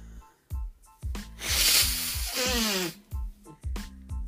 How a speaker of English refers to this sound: I'm going to blow my nose for a sec. Hope audio doesn't pick up.